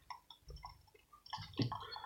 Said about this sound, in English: Might be some coffee making sounds here.